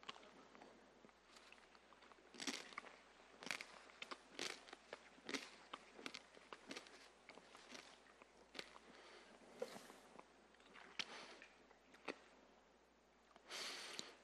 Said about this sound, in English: when we chew the bread, my sins crushed him.